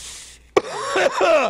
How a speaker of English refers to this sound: It's still itchy in my throat like a motherfucker. Yeah. But maybe I can get past it. Wait, if I take a hit of this, I can claim this made me cough.